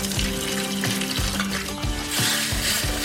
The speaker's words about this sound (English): Add some water to this pot now. That's when the gravy begins. I love the sound of sizzle.